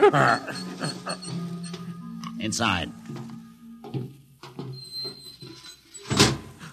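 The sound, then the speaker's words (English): The sliding door to a main control room opens with a brief mechanical whir and thuds shut a few seconds later, while people speak over a low background hum. “Open the door”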